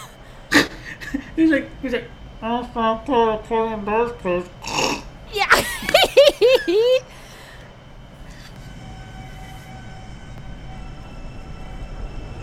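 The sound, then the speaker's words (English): The motor of a Brooklyn-bound skip-stop Z subway train whines up loudly in several pitched stages, then drops into a steady humming rumble as the car keeps moving toward Woodhaven Boulevard. “Tell me that power up noise doesn't sound better than in Dreamy Train.”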